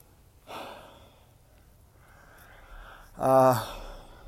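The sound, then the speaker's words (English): Heavy breathing of a person walking up a hill with a dog in Debs Park, Highland Park, Los Angeles: a breathy exhale early on, then quiet, then a louder, partly voiced gasping breath near the end, with no talking. “Yes, I am excited to talk to you, but that's not the only reason I'm breathing heavy. I'm also walking up a hill in Debs Park, Highland Park, Los Angeles, walking the dog as usual.”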